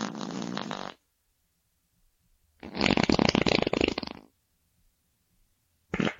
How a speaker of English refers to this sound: Sorry about that. Absence makes my farts grow stronger.